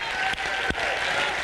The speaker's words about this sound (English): Somebody stand and clap your hands to the Lord and let your voice out and shout out unto him with a voice of victory today.